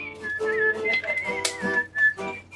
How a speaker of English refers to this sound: This is what that means. It's not a whistle while you work kind of trifle. For her, whistling is work.